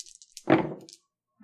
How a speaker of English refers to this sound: All right. So we are going to have you roll. Okay. You're rolling two dice.